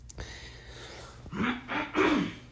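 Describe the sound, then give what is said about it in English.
A man clears his throat in three rough, rasping bursts with a low growling tone, each a little stronger than the last, after a short quiet breathy start. “If you clear my throat this whole episode, I just got to stop apologizing.”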